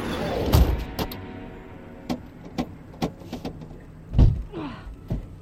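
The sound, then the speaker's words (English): Car door locks clunk shut in a string of sharp mechanical clicks, spaced irregularly over several seconds, with a heavier thunk near the end and no talking. “Doors won't open, babe. It's called Master Lock.”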